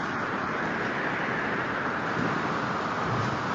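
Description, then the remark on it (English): A strong ocean storm wind roars steadily, a dense unbroken rush of noise that buffets the microphone with no voices or distinct events. “It's very windy in the ocean.”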